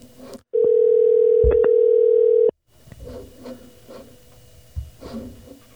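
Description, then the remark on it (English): A phone's outgoing ringing tone sounds once, a steady, loud electronic hum lasting about two seconds, followed by faint room noise and a few soft knocks. “And if I turn this up, do you hear it ringing?”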